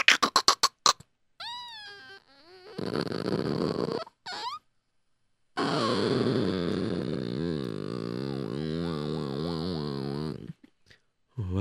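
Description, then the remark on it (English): An absurdly long creak of the door into Shraga Feivel's office at a tannery: a few quick clicks, then whining, warbling tones that swoop up and down, stretching into a drawn-out groaning squeal lasting several seconds, with no talking. “I've heard of doors before, but this one is ridiculous.”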